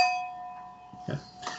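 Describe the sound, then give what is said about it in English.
Glasses clink together in a toast, leaving a bright, high ringing tone that slowly fades, followed by a couple of brief, quieter knocks and rustles. “We're gonna cheers. Yeah. Okay. Cheers.”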